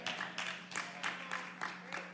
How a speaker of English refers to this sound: You see, that was a great place to clap. Some of you, those of you that clapped, God bless you.